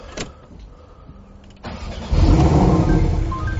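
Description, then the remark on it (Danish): A Porsche 718 Boxster's engine is started: a brief whirring crank, then the engine catches with a sudden loud, deep rumble that settles into a steady, throbbing idle. “Nå, men det I har ventet på, det er jo at høre den motor. Så jeg tænker, at jeg lige vil starte den op.”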